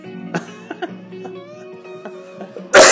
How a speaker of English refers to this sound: can't even cough in this world anymore. Oh, no, without getting vid looks. Nope. Everybody thinks you've got the Rona.